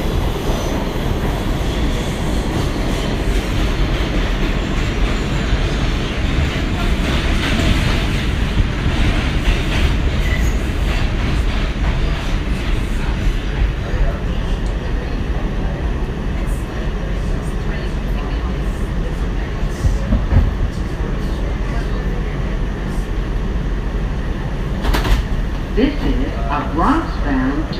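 A subway train rides the rails between the Wall Street and Fulton Street stops with a steady, loud low roar and rattling clatter, ending with a brief high metallic squeal of the wheels.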